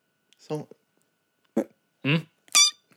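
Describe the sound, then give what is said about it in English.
Several short, throaty burps right up against the microphone, separated by brief pauses, ending with a higher, squeakier vocal noise. “Why are you burping into the mic?”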